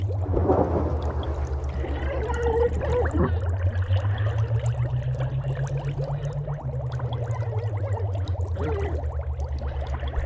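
bubbling

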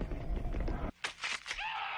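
horrible scream

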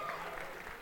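tepid audience applause

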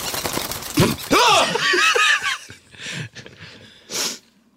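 sneeze

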